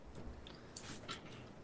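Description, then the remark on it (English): Several quick, uneven keyboard clicks tap out with no talking, ending in one sharper, louder keystroke. “You have to record the loud typing every time you answer.”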